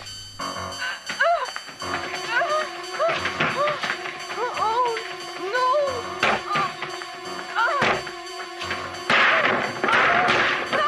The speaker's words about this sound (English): Breaking a lot of furniture. Yeah, that's the door that'll have to get replaced. And Jamie Lee is about to smash the glass. Well, the patio door will have to be replaced.